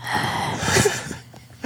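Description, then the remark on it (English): Breathy rushing noise of a person breathing into a microphone, a steady airy exhale lasting about a second before tapering off, with no talking. “pull the microphone down a little bit so you're not breathing into it.”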